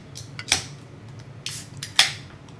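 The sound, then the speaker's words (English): Two beer cans crack open in turn, each a sharp metallic pop followed by a brief fizzing hiss, with small clicks and rustles between them and no voices. “But are you guys ready to crack these beers open?”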